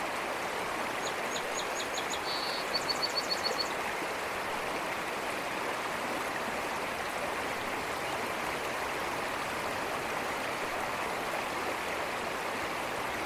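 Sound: waterfall rushing water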